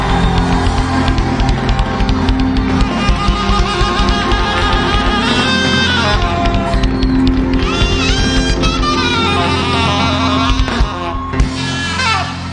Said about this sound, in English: Jesus, a mighty clap offering of praise.